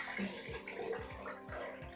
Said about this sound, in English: That wasn't urination. That's him taking the washcloth out of the bath and letting the water drain back into the bath. He likes doing that.